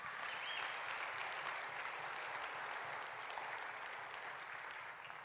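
A church audience claps steadily for several seconds after a prayer, a dense, even wash of many hands with no break and no voices standing out, fading just slightly at the end.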